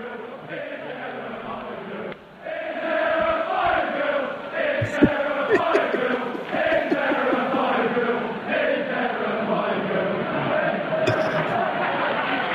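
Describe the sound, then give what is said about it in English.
A lone voice imitates a chant that Leeds fans sang toward the crowd as they were leaving, a loud, sustained melodic holler whose pitch rises and falls through repeated phrases for about twelve seconds, with a few faint clinks behind it. “And Leeds fans are leaving, and they start chanting this towards the crowd.”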